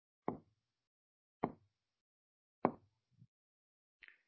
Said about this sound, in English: I beseech thee to halt this ridiculous tapping at my door.